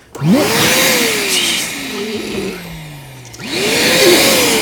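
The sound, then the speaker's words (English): A loud vacuum cleaner runs with a hissing roar. Its motor whine rises, sags and slides downward midway, then surges back up to full power. No one speaks. “All I'm sitting here hoping is that there was not an episode of Howard Stern where they had a fucking vacuum the whole time like this.”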